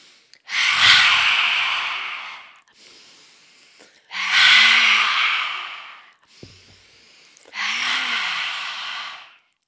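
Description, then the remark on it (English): Three forceful, breathy exhalations through an open mouth in a lion's breath yoga breathing exercise, each a loud rushing hiss with a faint voiced growl, separated by quieter inhalations in a steady rhythm. “Three lion's breath starting now.”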